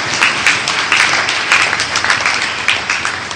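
A crowd applauds steadily, many hands clapping in a dense, continuous patter that holds at a fairly loud level for a few seconds, with no voices over it.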